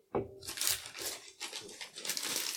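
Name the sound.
wrapping paper crinkling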